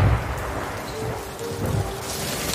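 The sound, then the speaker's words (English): A steady, dense hiss of a hailstorm striking a town at night, with low thunder rumbling underneath and swelling briefly at the start and again midway. No voices. “That night, a hailstorm struck the town.”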